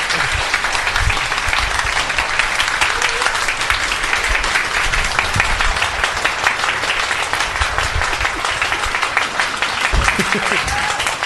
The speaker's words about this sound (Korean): 그런 의미에서 오늘 어려운 얘기였지만 열심히 들어주셔서 감사하고 특히 너무나 열심히 말씀을 해주신 교수님께 아주 감사하다는 말씀 드리면서 큰 박수 부탁드리겠습니다.